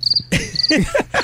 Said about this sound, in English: are those the crickets making that noise in the bar? Yeah. They're still alive.